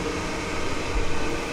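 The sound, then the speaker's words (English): A train passing by at 11 o'clock on a Saturday night: a steady, broad rumbling roar that holds at an even loudness throughout, swelling slightly partway through, with no voices over it. “Guarantee you there's someone on that train that just went past right now watching something at loud volume and annoying other people.”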